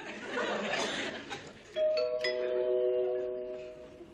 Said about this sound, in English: Doorbell! Will somebody get the door? Will somebody get the door?